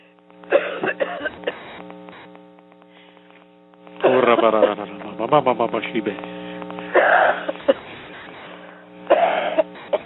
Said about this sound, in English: I just command all the demons inside to attack this coughing demon right now.